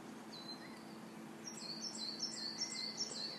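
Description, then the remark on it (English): A large bird, circling under blue skies, calls: one thin whistle, then a rapid run of high, piercing, descending cries repeating over a low steady outdoor hum, with no voices. “Big massive bird he is. Circling.”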